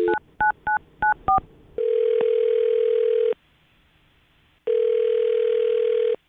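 A quick run of about five touch-tone keypad beeps, then a loud, steady telephone tone that holds for over a second, pauses, and sounds again. No voices.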